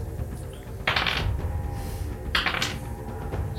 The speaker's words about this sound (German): Willst du verdoppeln oder zweimal würfeln? Zweimal würfeln. Gut, leg los.